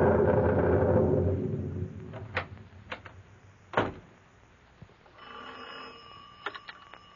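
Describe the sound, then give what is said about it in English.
Several sharp clicks and knocks of handling a telephone in a shack give way to a sustained, metallic telephone bell ringing at moderate volume near the end. There are no voices. “I'm going to the shack and phone them to shoot the juice.”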